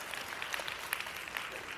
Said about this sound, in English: Oh, yeah, you guys can clap